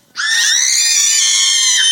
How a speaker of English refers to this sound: Okay, when I say three, one, two, three, you can make as much noise as you can. Like screaming is allowed in church, okay? Not often, but it is today, okay? You good? Yeah. One, two, three.